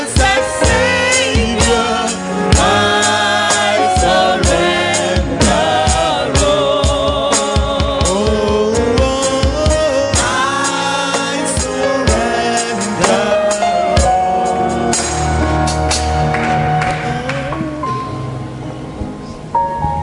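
An audience in a church service on Covenant Sunday claps hands continuously as people step into the aisle and come to the front to pray, a dense, steady patter blended with loud, sustained music playing throughout, with no one speaking.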